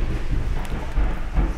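Thunder rumbles low and heavy through a steady hiss of rain on a dark, stormy night, the deep bass swelling and fading in rolling waves; no voices are heard.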